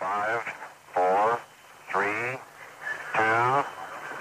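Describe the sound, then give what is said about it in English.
Four loud, nasal duck quacks in a row, spaced about a second apart, each a short buzzy honk standing alone with a faint hiss between them. “ducky, ducky, quack, quack.”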